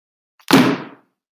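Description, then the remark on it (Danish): A man throws a heavy book down onto a table, landing with one loud thud that rings briefly before fading, preceded by a faint tap and with no voices. “Han kaster den tunge bog ned på bordet.”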